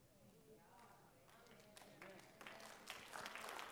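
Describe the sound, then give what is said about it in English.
An audience breaks into clapping for a woman's work with a school in Abood on the West Bank, where hers is the only surviving church of 17. The clapping swells over a few seconds, scattered claps thickening into steady applause, with murmuring voices underneath at first. “Yeah, that's something to clap for, because she's one of those folks that has peace and got favor.”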